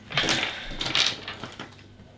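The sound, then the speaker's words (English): Dice, including a D8, D10 and D6, handed over and rolled during a tabletop role-playing game, clatter and rattle in two quick bursts of bright, hard clicks, like small plastic pieces tumbling across a table, with no voices. “Someone give me a couple of dice.”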